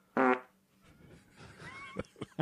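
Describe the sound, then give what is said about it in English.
A short, loud fart bursts out with a buzzy, rasping tone, followed by a softer sputtering tail and a few faint crackly pops before it trails off. “Identify the fart with the HHW member. Whose fart is this?”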